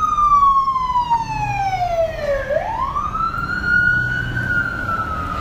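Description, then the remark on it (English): An emergency vehicle siren wails past, its tone sliding steadily down and then swinging back up as it goes by, loud over a low rumble of street traffic. “I did a podcast yesterday when I was walking to church, but I decided not to post it because, sirens.”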